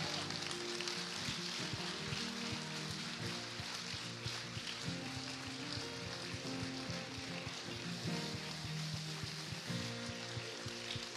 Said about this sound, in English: So friends, would you clap your hands as these baptism candidates come up here to the front?